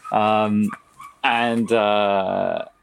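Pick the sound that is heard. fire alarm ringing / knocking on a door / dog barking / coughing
dog barking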